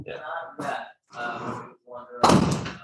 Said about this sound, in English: I'm just going to close the door there.